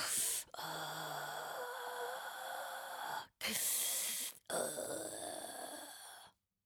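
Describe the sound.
A voice imitates the slow, heavy breathing of a harassing phone caller, three long raspy breaths in and out with short pauses between them, with no talking.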